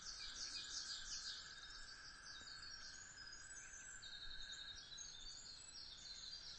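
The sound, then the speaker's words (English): A toad's long, steady trill hums without a break by a beaver pond of a couple acres in Vermont, with hemlocks on mossy ground, while scattered bird chirps and tweets flit above it in a quiet outdoor setting. “Or a toad singing, which is what's happening right now.”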